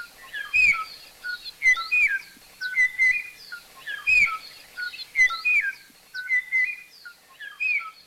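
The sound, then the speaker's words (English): A single Kauai o'o, the last known individual of the now-extinct Hawaiian forest bird, recorded in the 1980s in the highest forest near the top of Kauai, sings to a mate a repeated series of clear, fluting whistled phrases, evenly spaced over several seconds, against a quiet forest background with other faint chirps. “A very small population of this species made it into the 1980s in the highest forest near the top of Kauai, when the last known individual was recorded singing its beautiful and haunting song to a mate that no longer existed.”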